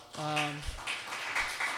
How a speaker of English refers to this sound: Wow, that's a huge applause.